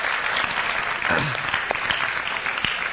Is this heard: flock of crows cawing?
no